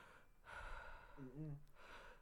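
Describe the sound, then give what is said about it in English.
A person imitates heavy breathing, heard over a device: a long breathy inhale, a short voiced, hum-like moan, then another breathy rush of air, moderately loud and alone. “And just like breathing, and we're wow.”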